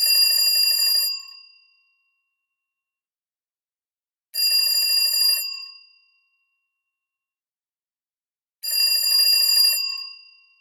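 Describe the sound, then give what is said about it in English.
A telephone rings in three bright, trilling bursts of about a second each, separated by long silent gaps, loud with no voices. “And then a week after I got back to the country where I now lived, I got the dreaded phone call.”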